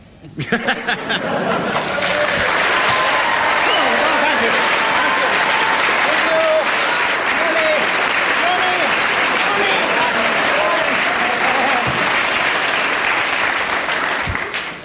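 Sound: studio audience applause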